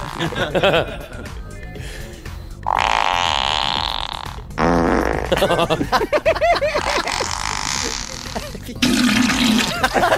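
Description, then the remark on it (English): Several loud, drawn-out fart sound effects played from a phone blast in turn, each a raspy burst lasting a second or more, with people talking and briefly laughing in between. “That is disgusting. That's a Triple M fart.”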